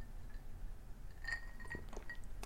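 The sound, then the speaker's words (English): Someone sips a margarita made from margarita mix from a glass in a quiet moment with no talking: a few faint, high glassy clinks, like ice against the rim, come in quick succession amid soft handling noise. “I'm going to take a sip here of it.”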